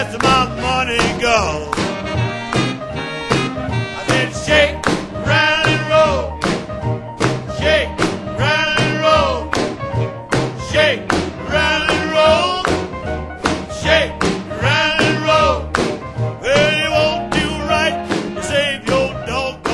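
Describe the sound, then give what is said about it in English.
A blues song with a raw, hollering vocal over steady stomping thumps and driving accompaniment, loud throughout the whole stretch. “We love it too, but we're rockers through and through, so we go in more for that soulful blues stomp and holler.”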